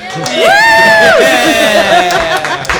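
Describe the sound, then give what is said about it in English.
A crowd welcoming a guest cheers with one loud, high whooping shout that rises and falls, over a steady wash of applause and scattered voices that fades slightly toward the end. “I feel everybody's going to be so sick of applauding by the end of this podcast.”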